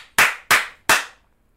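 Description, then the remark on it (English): Three loud, sharp slap sound effects, given as a rating, land in quick, evenly spaced succession, each a crisp smack with a short fading tail, followed by silence. No voices. “Was that five? Song. Five slaps?”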